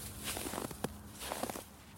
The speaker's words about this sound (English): I could hear her footsteps walking around the cabin and her calls to me.